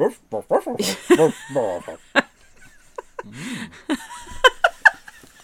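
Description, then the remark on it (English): A dog lets out a string of whimpers and whining cries mixed with short barks and yips, ending with a few sharp, high bursts. “Thanks, Hooch. Anyone speak dog?”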